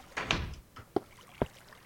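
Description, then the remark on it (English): A wooden door in the game Minecraft swings open with a short rough creak, then two crisp hollow clunks follow about half a second apart, with no voices. “Remember, you don't have to worry about closing the door behind you now.”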